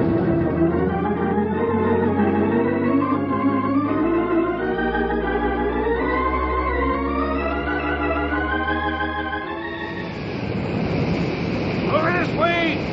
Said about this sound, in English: What was that? Wait, it sounds like... It is! It's oil! A gusher! It must have been broken through by itself.